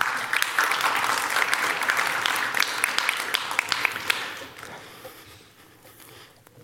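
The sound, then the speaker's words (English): An audience bursts into steady applause, a dense wash of many hands clapping that holds for several seconds and then tapers off, fading to a quieter patter by the end. “threw me off with that clapping.”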